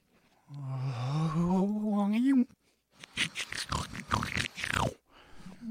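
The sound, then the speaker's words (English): A voice imitates backwards snoring: a long, strained groan climbing steadily in pitch, cut off abruptly, then a few seconds of choppy, raspy snorts and gasping bursts. “I made him snore in reverse. The sound is even worse.”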